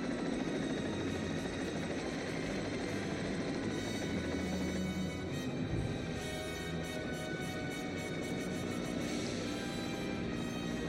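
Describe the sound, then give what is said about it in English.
A helicopter drones steadily, flying around in circles over the desert, its rotor chop and engine whine filling the air with a continuous, loud, rhythmic thrum throughout, with no voices. “Flying a chopper around in circles?”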